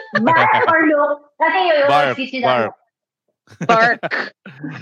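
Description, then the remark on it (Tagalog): A person imitates the bark of a dog named Cali in a few drawn-out, wavering whine- or howl-like vocal bursts with brief pauses between them, fairly loud. “Imitation of Cali's bark pala, ano ba yan?”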